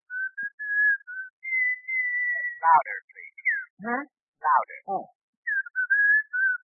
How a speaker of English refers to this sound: Will you stand back from your phone about 5 feet, please? Huh? Oh, sure. Sure. I am. Thank you. Now, whistle. Oh, yeah, glad to, of course. Ready? Yeah, go ahead.